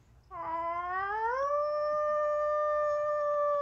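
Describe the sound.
A person imitates a wolf howl: one sustained, rising tonal cry that swells and then holds a long steady pitch, loud, with no other sounds around it.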